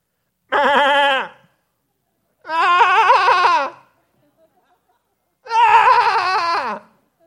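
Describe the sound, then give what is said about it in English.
A person's voice imitates a sheep with three loud, quavering bleats, each about a second long and separated by short silences. No other talking. “What did that sheep do when it got lost?”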